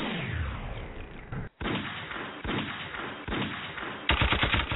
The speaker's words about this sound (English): Where my damn gunshots at?